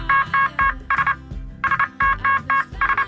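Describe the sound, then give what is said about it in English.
Morse code beeps sending an SOS message on a morning radio show: a loud run of steady mid-high electronic tones, some short and some longer, tapped out in quick groups with brief gaps, over a faint low rumble. “We're sending you a message via Morse code.”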